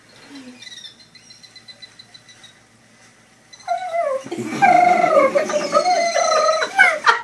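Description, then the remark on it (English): A person imitates dolphin calls: faint high whistles at first, then a loud burst of rapid, warbling squeals and chattering squeaks sweeping up and down in pitch. “Dude, I speak dolphin!”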